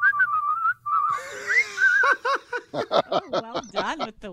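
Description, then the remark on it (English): A short whistled melody rises and falls for about two seconds, clear, then gives way to bursts of snickering laughter and chatter. “Well done with the whistle.”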